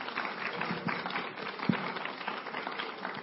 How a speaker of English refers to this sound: Well, thank you guys for sticking around for our Q&A. Can we give our panel a round of applause?